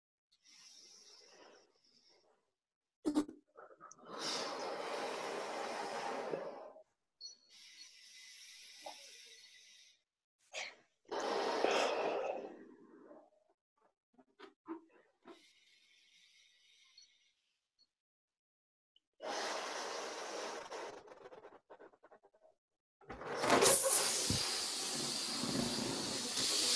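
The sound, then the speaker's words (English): A balloon is inflated with several long, forceful breaths, each a rushing, hissy exhale separated by short pauses, with faint rubbery squeaks between puffs. The final blow is the loudest and longest. “And then I continue blowing it up.”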